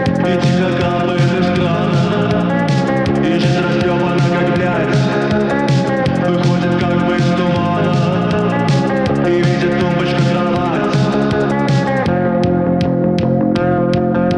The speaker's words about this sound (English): haunting, droning voice and the minimal, echo-laden music.